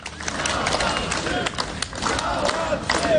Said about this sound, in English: 3 men walk out of a large grey metal door, smiling shyly as they're greeted by the crowd outside the jail. They were detained on Sunday, the day when protests in Belarus started.